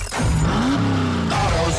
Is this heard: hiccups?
no